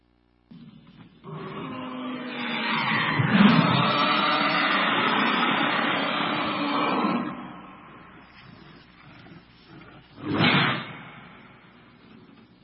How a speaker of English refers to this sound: Zombie roar. I wish that it had been like 10 times louder. And that idea of the roar of the zombie. In some zombie mythologies, it's just kind of like this noise that they make that draws other zombies.